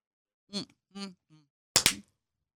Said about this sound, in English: Did we ever clap?